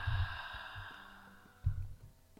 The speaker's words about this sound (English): Taking a soft, gentle breath into your heart center, gently breathing in and out.